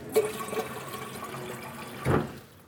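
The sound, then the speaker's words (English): 544 grams of water is poured into a mixing bowl for a bread dough: a brief splash at first, a steady trickle, then a louder gushing burst near the end. No one speaks. “And the next thing is 544 grams of water.”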